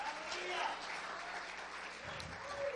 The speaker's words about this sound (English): Somebody clap your hands and give God a praise.